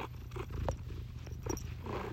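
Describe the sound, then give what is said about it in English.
A cat named Luna purrs steadily while being petted on the head, a low continuous rumble with a soft rhythmic flutter, accompanied by faint rustling and small handling noises. “No, actually just pet her head. She'll meow really loud, probably.”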